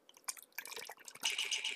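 Liquor (Havana Club rum, Martell cognac, Bird Dog peach-flavored whiskey) pours into a container, starting with a few splashy glugs and drips before settling into a steady, bright stream of liquid filling the vessel.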